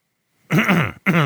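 A man clears his throat in two gravelly bursts, a longer rumbling rasp followed by a short second one after a brief pause.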